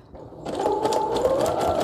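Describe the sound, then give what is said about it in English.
A sewing machine starts up after a brief quiet moment and runs steadily, its rapid rhythmic clatter and humming motor whine stitching a zigzag through paper, with no voices. “And we're zigging, and we're zagging, and it's a little baby zigzag.”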